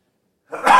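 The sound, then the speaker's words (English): A single sharp sneeze bursts out loud after a moment of silence, a breathy, explosive blast that fills the end of the short clip. “Bless you. Excuse me.”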